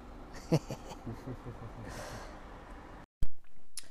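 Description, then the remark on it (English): Slow, heavy breathing of a sleeping person with a sharp snort-like intake, followed by a hissing exhale over steady background noise, then an abrupt cut to silence and a loud click. “The audience likes it, the soothing sounds of your heavy breathing when you're asleep.”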